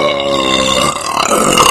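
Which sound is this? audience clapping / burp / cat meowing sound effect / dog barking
burp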